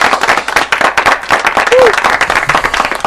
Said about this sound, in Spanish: Y mira, tengo que mandar felicidades a Vanessa, nuestra amiga allá en Italia, que cumple años hoy. Vamos a darle un aplauso a Vanessa. ¡Vanessa, felicidades!